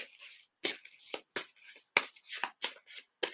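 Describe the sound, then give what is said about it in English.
A deck of cards being shuffled, a run of quick crisp riffles and soft papery flutters in irregular bursts, with short pauses between them and no voices. “So as I'm shuffling, I'm waiting for a card to speak to me.”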